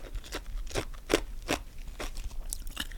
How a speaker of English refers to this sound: It's just like chewing on ice.